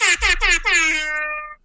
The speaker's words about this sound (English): That was a good one. That was a good air horn. That was a really good one.